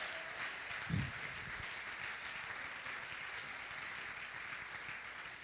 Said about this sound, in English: Can we clap our hands in here right now?